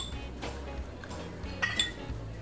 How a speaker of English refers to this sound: I mean, let's crack it open. I'm only going to pour half, because I got to save this for other sips. Yeah, I'll do half. So, that's an ounce.